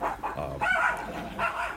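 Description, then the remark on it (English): Puppies bark and yip in quick overlapping bursts, high-pitched, continuing through the whole moment with no one speaking. “There are those puppies.”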